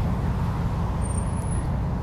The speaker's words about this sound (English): Oh my god, here comes a truck called Kung Fu Grip. That's interesting. It's got lightning bolts on it. KFG, baby.